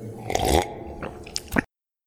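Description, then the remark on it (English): Wet swallowing and gulping as someone drinks quickly, a few squishy mouth noises and a final throaty gulp before it cuts to silence. No talking. “Has someone got a glass of water or something here? Here, drink this.”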